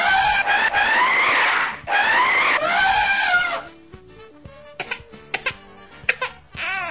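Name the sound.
baby crying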